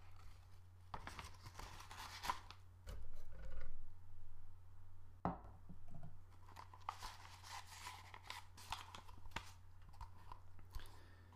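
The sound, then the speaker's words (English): Paper crinkling and rustling as the sides of a paper coffee filter are creased and folded for use in the funnel of a drip coffee machine, coming in short irregular bursts over a low steady hum, with no talking. “So you just have to fold the sides like this, and because I don't have a dripping cup.”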